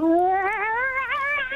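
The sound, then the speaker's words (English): A woman imitates a cat's meow: one drawn-out, wavering cry that climbs steadily in pitch, fairly loud, with no other talking. “That's her doing a cat impression.”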